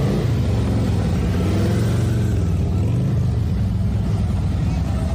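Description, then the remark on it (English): Motorcycle engines of Warrior Riders Motorcycle Club members rev loudly and steadily, their deep rumble rising and falling in pitch as several bikes idle and throttle up together for about five seconds, during a motorcycle escort from Medical City Arlington to a home in Midlothian. “Then they gave him a motorcycle escort back to his home in Midlothian.”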